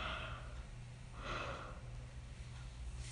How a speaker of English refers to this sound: I just yawned. Like, large yawn.